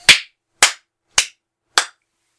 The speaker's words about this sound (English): I gave you that really sarcastic clap, but I've totally done something similar.